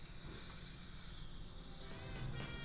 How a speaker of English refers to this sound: Kettle's boiled.